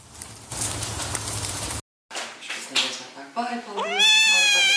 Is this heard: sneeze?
no